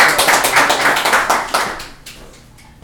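A small group claps in quick, uneven bursts, the applause holding steady for about two seconds before thinning out and trailing off into quiet with a few last claps.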